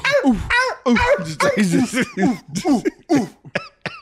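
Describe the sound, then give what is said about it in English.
A woman imitates a dog barking, doing both a big dog and a tiny dog, with a quick series of about a dozen short, voiced barks and yips, fairly loud, ending with a few thinner, higher-pitched yaps. “Bark like a dog. She chooses a tiny dog, a big dog.”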